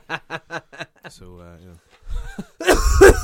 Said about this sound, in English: Oh, God, do not. Don't cough on me